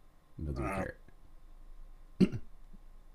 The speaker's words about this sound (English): Excuse me. Still got a bit of a lingering cough, but, you know, COVID doesn't just go away and leave you alone, you know.